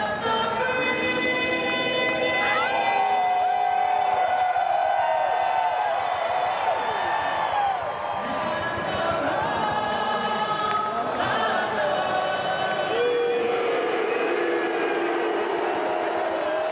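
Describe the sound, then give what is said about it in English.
A huge stadium crowd at City Park, many of them Blues fans, shouts and roars nonstop at the end of the national anthem at the start of a game, many voices blending into a loud, sustained wall of sound with rising yells swelling through it from start to finish. “So, you know, obviously a lot of Blues fans in the crowd last night at City Park.”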